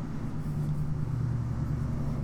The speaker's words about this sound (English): Oh, fix your fucking muffler.